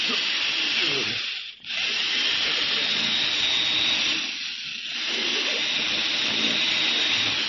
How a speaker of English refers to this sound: Do you think I've drill into this vault deep enough now, Mr. Beecher? Yes, I think so, Addy. Looks good. How deep is the hole?